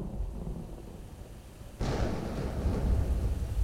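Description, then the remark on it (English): A thunderstorm with a low, steady rumble of thunder, then a sudden loud crack at about two seconds that rolls on and sustains, broad and booming, with no voices. “A storm did in fact roll through West Alabama on that fateful night”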